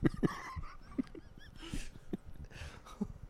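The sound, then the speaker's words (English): A sound effect of several muffled, gurgling dog barks in quick irregular bursts, distorted and watery as if the dogs were underwater, with bubbly hissing between them. “Hear a bunch of dogs bark underwater.”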